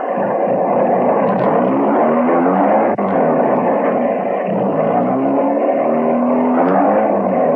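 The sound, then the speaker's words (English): A car engine roars loudly, its pitch rising and falling as it revs and accelerates away, filling the whole stretch with steady motor noise and no voices. “get in that car quick.”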